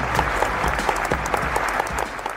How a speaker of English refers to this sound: So warm round of applause for Mr. Jay Akunzo.